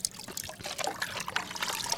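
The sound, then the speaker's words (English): Water trickles and splashes steadily, a continuous bright dribbling with small irregular spurts, as kids rinse paintbrushes under running water. “As the day winds down, a few kids wash up paintbrushes while others grab spray bottles and start a water fight.”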